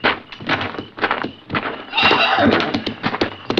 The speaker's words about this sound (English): Wait a minute. Listen. The horses, there's somebody out there.